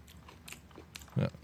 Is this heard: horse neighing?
no